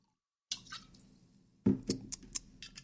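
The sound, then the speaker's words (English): Tequila being poured into a glass from a half-empty bottle: a soft splashing stream, then a louder burst of gurgling pours with small clinks and drips, and no voices. “But we're going to pour a little Jim Adore's for us right now.”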